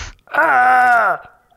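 A Wilhelm scream: one loud, sustained cry of just under a second, strongly voiced and fairly steady in pitch, dipping slightly as it cuts off, with no speech around it.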